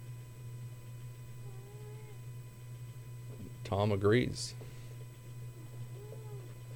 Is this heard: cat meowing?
yes